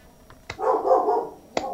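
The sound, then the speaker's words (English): One of the speaker's dogs gives a short, whiny bark-like vocalization lasting under a second, bracketed by sharp clicks. It is moderately quiet, with no talking. “Dude, don't tell me what to do. Not you, my dogs.”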